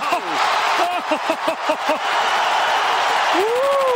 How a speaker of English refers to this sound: And the crowd responds to a spectacular dunk from Vince Carter.